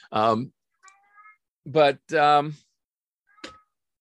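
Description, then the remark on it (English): A cat meows three times, loud drawn-out cries with a short pause before the last two, followed by a faint brief chirp near the end; the cat wants something. “Hi, cat. My cat wants something.”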